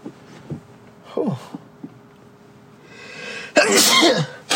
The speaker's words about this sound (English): Bless you.